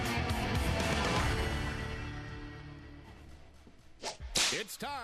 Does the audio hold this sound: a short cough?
no